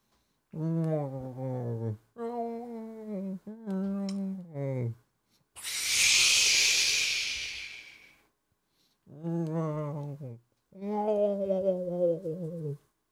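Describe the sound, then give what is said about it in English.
A voice mimics blue whale song with a series of long, wavering, low moans, interrupted midway by a loud, rushing breathy exhale before the drawn-out moaning resumes. “So, boys, get your sleeping bags ready, because I'm about to put you to dreamland with my whale sound.”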